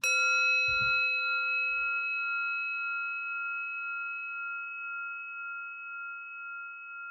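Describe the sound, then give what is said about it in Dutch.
A single small bell is struck once to mark a position, ringing out clearly with a bright metallic tone that lingers and slowly fades over several seconds, with a faint low thump near the start. “Dus je zal een belletje horen ook bij elke positie, dit belletje.”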